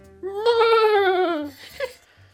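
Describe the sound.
A person does an impression of actor John Hurt as a horse: one loud, quavering vocal whinny lasting about a second, its pitch wobbling and sliding down before ending in a brief breathy huff.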